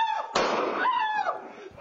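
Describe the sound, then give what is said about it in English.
A single loud, sharp gunshot cracks out during a robbery of Lady Gaga's French bulldogs and their dog walker in West Hollywood, then fades while a strained, wavering, cry-like yell carries on before and after it. “And then you just heard the shot get fired.”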